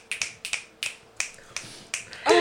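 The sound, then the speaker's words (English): A quick series of about seven sharp finger snaps in an uneven rhythm, each crisp and bright, followed by a brief louder burst of noise at the end. “Snaps fingers.”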